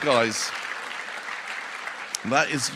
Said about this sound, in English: Yeah, you should clap. Because that is you guys.